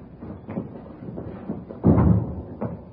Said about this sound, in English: Here, I'll get the door.